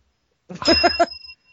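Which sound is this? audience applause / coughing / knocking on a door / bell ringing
bell ringing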